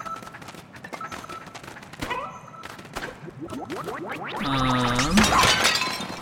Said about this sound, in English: We shatter the ceramics near the way back to the surface.